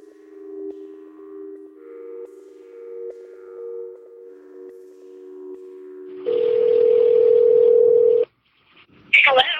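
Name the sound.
phone call ringing tone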